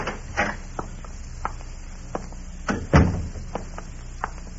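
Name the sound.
knocking on a door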